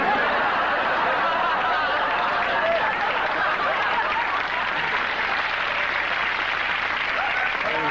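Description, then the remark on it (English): A large audience applauds steadily throughout, a dense wash of clapping mixed with laughter and scattered whoops and hollers, sustained and loud for the whole stretch. “Like, it's laughter and, like, hooting and hollering and, like, applause.”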